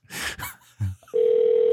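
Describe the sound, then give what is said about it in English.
An outgoing prank phone call ringing: after a few brief breathy, rustling noises, a steady electronic ringback tone starts and holds loud and even to the end. “Yeah, he probably won't answer. That's what you get when you try to prank call people.”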